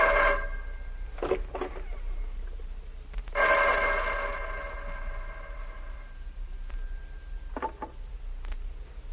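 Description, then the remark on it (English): A telephone bell rings in two bursts, a short one and then a longer sustained ring, loud, with a few brief clicks between them and no one talking. “take the phone in the hall.”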